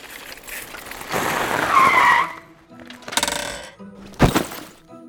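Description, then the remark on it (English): A bicycle skids to a stop at a bike rack under a tree with a drawn-out, scraping hiss that swells and fades, followed by a few short clunks and rattles. “Someone has parked their bike at the bike rack right under my tree.”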